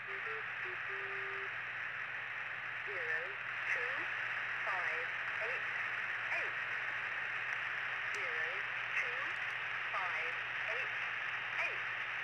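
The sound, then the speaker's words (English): A shortwave numbers-station broadcast: a steady wash of loud radio static and low hum, with faint, warbling tonal snippets of a melody drifting in and out throughout. “This one is Lincolnshire Poacher, which has like music playing and static.”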